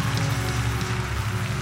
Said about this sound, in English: If you believe, you ought to clap your hands and give God praise in this place.